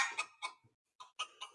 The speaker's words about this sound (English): Oh my gosh, I hear a chicken. Is that a turkey? Is that a, I mean, it's kind of, yeah, turkey, chicken.